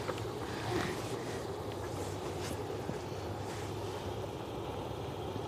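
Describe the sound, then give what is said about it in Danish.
A small boat's motor drones steadily as it sails past in the harbor, a low hum layered over breezy outdoor noise, with no one talking. “nu har vi lige slået os ned her på havnen og kigger ud på et lille båd, der kommer sejlende forbi os.”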